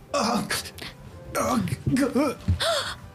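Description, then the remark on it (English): A voice makes a quick series of strained, exaggerated anime-style grunts, gasps and whimpering moans in short bursts, fairly loud, like cartoonish effortful struggling. “It's anime struggle sounds, you okay.”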